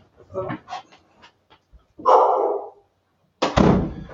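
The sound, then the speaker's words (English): A dog barks a couple of times in rough, muffled bursts from another room, after a stretch of someone talking. “I'm sorry, my dog's barking in the other room. Let me shut this door.”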